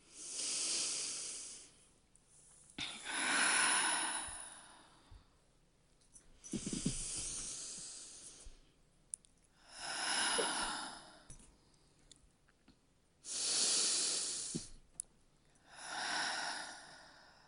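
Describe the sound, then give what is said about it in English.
Three to four slow, deep belly breaths in and out, several full airy inhales and long exhales in a steady rhythm, with brief quiet pauses between them and no talking. “I'm still rubbing my leg in this moment, and I'm going to invite my body to take another 3 to 4 belly deep breaths.”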